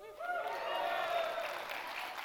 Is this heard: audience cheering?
yes